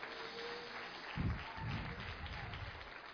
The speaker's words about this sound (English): Give the Lord a hand clap if you believe and understand what I'm saying.